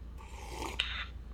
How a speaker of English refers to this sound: Hold on. Let me take a sip of tea.